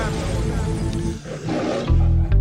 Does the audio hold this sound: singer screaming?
no